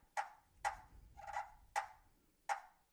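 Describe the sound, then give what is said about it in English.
Sharp, high-pitched clucks, a turkey contentment call, scratched from a friction turkey call by dragging the striker close to the center, five in an uneven series, with the middle one drawn out slightly longer and rougher; no one talks. “Purring and clucking is a contentment call.”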